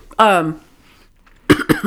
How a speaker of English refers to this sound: I just, holy balls, that was foul. I coughed and snot just shot from my nose because I tried to suppress the cough.